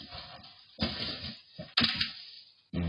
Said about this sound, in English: He farts. And then he smiles at the end. Sometimes you just got to fart, man. He shit his pants right there. He knocked the fart loose is what he did.